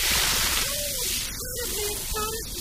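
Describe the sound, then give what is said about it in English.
Hot golden tea pours steadily into a cup for a couple of seconds, a hissing splash with a faint gurgling tone rising in pitch as the cup fills. “Oh, well, let me pour you a nice golden hot tea.”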